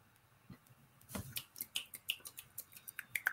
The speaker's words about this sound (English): I don't know if clapping will sound good.